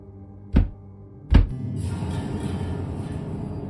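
Two dull, heavy knocks land less than a second apart, each a single sharp thud with a deep low end, followed by a steady murmur of background noise.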